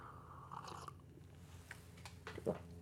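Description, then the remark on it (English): Someone takes a second quiet sip of coffee, with a few soft wet slurping and swallowing noises spread over a couple of seconds and no talking. “That was so good, I'm going to have a second sip.”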